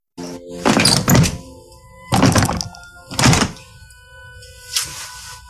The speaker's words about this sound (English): Is that Bruce Willis trying to open the door? It is. Yep, the red doorknob.